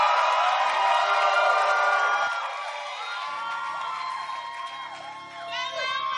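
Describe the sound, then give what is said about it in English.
A church audience claps, cheers and whoops together to welcome a woman coming up to minister, a loud, sustained wash of many raised voices with high shouts rising and falling, easing slightly midway before swelling again. “Keep clapping. Keep encouraging her.”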